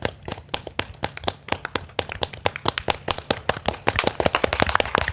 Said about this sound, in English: I'm clapping.